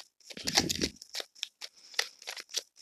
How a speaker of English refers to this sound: Shuffling the Rider-Waite tarot deck.